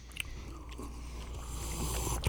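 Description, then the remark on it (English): Soft chewing of a salty anchovy bite with cheese, lemon and garlic, with moist mouth sounds and a couple of sharper clicks, one near the start and a louder one at the very end, with no talking. “Now, while that's in your mouth, right before you swallow, take a little sip of the absinthe.”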